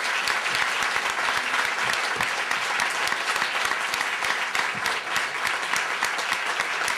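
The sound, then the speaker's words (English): Sustained, steady applause from a large audience, a dense wash of many hands clapping at an even loudness for the whole stretch, with no voices standing out. “No, my old joke, don't use your energy to applause.”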